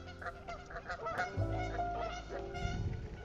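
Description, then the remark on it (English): Loud, close geese honking in repeated harsh, overlapping calls, several birds crying out at once with no pause across the few seconds. “Those geese are getting close.”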